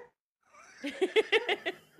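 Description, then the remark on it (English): A dog barking and whimpering in its sleep during a nightmare: a quick run of about six soft, muffled yips in a steady rhythm, fairly quiet, with no talking. “He barks in his sleep because he can't bark when he's awake.”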